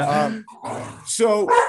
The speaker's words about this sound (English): Hey, bye-bye. Thank you. It's my construction guys leaving. That's a really good thing. The dogs will stop barking at them.